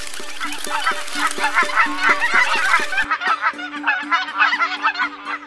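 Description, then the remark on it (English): A flock of wild geese honk continuously in a very tall tree deep in a forest, many overlapping nasal calls forming a busy, loud chorus, with no voices present. “This tree was the home of a flock of wild geese.”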